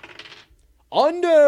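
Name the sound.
dice being rolled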